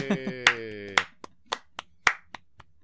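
A short, sparse round of applause: around ten sharp, uneven hand claps over a few seconds, loudest early and thinning out, with a brief voice sounding at the start.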